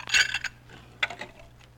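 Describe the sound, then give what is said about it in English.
Dishes clatter and clink as they're stacked while Jack Benny's house is cleaned up the morning after a party: a quick burst of bright ringing knocks followed by a few scattered clanks after a short pause, with a low steady hum underneath. “I was too tired last night to get all these dishes, Roy.”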